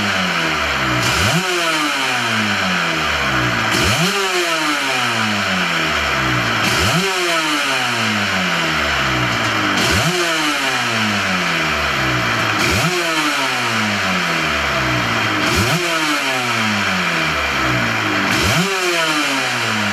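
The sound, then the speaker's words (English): A 500cc Grand Prix racing motorcycle engine, warming up, revs hard again and again, each blip sweeping sharply upward in pitch and dropping back, roughly every three seconds. Loud, with a raspy, crackling two-stroke edge and no talking. “Grand Prix racing's 500cc monsters”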